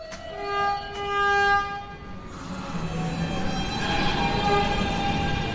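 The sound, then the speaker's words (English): A subway train pulls into the 72nd Street subway station with a steady, loud rumble, opening with a sustained, tonal horn-like blast that fades into the continuous roar of cars rolling along the track. “One of the other places where you can see Vic's work is at the 72nd Street subway station.”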